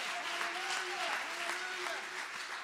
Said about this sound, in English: Would you clap your hands and give the Lord some great praise? Somebody clap your hands and magnify the Lord.